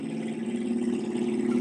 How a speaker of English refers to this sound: Oh, sorry. It's a car outside that's really loud. It's a motorcycle.